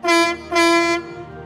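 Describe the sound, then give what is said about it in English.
The horn of Sydney, Thomas's friend, a dark blue diesel electric shunting engine, sounds two loud, steady toots, a short blast followed by a longer one, with a bright, reedy pitch and no talking underneath. “Sydney has a horn that sounds like this.”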